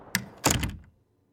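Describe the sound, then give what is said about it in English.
A garage door is shut by a woman re-entering the garage, with a quick latch click followed by a solid thud that fades out, leaving silence. No voices. “The woman looked down at him from the doorway, before re-entering the garage, closing the door behind her.”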